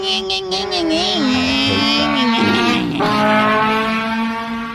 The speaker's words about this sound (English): And I guess another thing to consider, though, is noise. Yeah, it's kind of the thing that mopeds are most well known for. You know, the ringing.